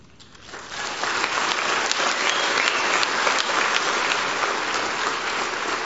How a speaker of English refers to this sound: You know why they're clapping? Because the Bible says if just one sinner repents, just one, that all of heaven rejoices. And let me tell you, heaven is rejoicing, and that's why we're rejoicing with you.